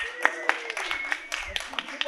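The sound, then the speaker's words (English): Scattered, uneven clapping from an audience at Affirmation Arts for the inaugural launch of the first five books of SPQR Editions, a handful of sharp claps spread across a couple of seconds rather than full applause, with faint murmuring and a thin steady tone underneath. “Y'all can clap for that.”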